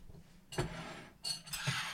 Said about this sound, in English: We just made a decision. Where's my decision bell?